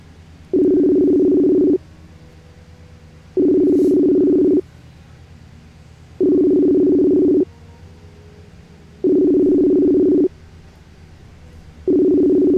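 A telephone rings on the line, a steady ringback tone sounding in about five even bursts with short silences between them, fairly loud and with no one talking.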